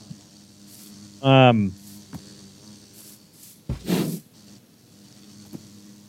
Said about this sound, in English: So we have a couple of cool ones: bees and parrots. So that's a bee. Ooh, whoa.